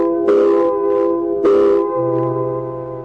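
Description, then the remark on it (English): A loud, steady, multi-toned factory whistle blares continuously at quitting time at a plant, with two hissing bursts of steam surging through it and a deeper tone joining near the end. “same quitting time, there was a whistle. Loud enough to buckle your knees and send waves up your spine.”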